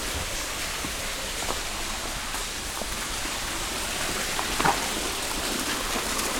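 A small, spring-like waterfall about 30 feet high, running through a crevice about a foot wide with water about 4 inches across, splashes steadily: a continuous hissing rush of falling water with faint droplet patters throughout and no voices.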